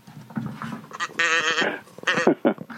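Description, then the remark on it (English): A cluster of loud farm-animal calls, a cow's moos with several quick wavering bleats in a row and no talking, played as a comic rim-shot punchline. “The cow's rim shot there.”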